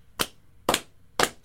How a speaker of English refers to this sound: Slow clap.